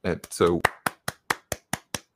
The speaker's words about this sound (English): I just have to give that some applause.